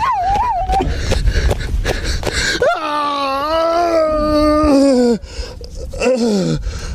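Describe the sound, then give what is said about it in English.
A human voice, muffled through a horse mask, imitates a horse's neigh: wavering, whinnying vocal cries that rise and slide downward in pitch, fairly loud, with a long drawn-out wail in the middle and a final falling whinny. “Sounds like he's neighing.”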